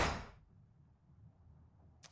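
A single hard thud of a person headbutting a metal door, loud, with a brief ring that fades into low rumble. A faint click follows near the end, and no one speaks.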